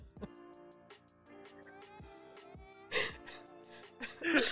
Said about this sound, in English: Stop, you don't even start coughing.